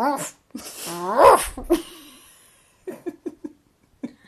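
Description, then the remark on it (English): A person imitates a sleeping Basset Hound's muffled, closed-mouth dream barking: a whiny, breathy vocal swell, then a quick run of four soft stifled woofs and one more after a pause. “and she barks, but with her mouth closed, so it goes...”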